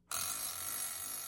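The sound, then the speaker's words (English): A loud electronic timer buzzer suddenly starts and rings continuously with a bright, harsh tone, sustained at steady volume without any voices. “The buzzer has gone off.”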